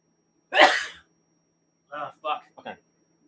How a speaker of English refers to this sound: So as I sneeze.